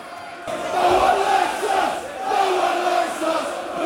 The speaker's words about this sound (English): Don't care, do we? The fans that were booing are now cheering.